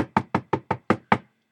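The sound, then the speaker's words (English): A quick, even series of seven knocks on a door, fairly loud, each rap sharp with a short hollow decay, then silence. “I'll just knock on the door.”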